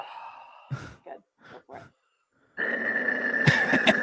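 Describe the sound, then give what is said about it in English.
A person makes a few short, breathy vocal bursts, then a sustained, rough, guttural growl, made by constricting the throat muscles, that rumbles on loudly for over a second, imitating a monster. “We're growling.”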